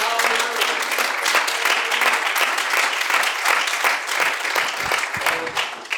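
An audience claps hands unto the Lord in a sustained, dense burst of applause lasting several seconds, many overlapping claps at steady loudness with no voices standing out.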